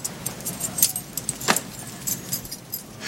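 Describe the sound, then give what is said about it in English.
A bunch of keys jingles as they are handed back, in a quick, uneven flurry of bright metallic clinks with one sharper clack midway, over a faint low hum and no talking. “Oh, and I want my keys back.”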